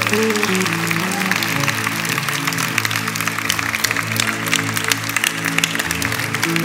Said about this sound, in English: You are so sad clapping like that. Come on, you can do better.